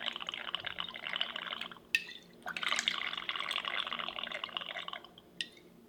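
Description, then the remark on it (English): A steady stream of clarified milk cocktail, 3 ounces poured from a batch, runs into a glass, pausing briefly and then resuming, with a small glassy clink between pours and no one speaking. “So we start, we pour out 3 ounces of our batch, our clarified milk cocktail.”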